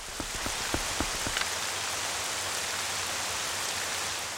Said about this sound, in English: The atmosphere in Hyrule Castle is, as you'd expect, breathtaking. In the courtyard, there is no music, only the sounds of pouring rain.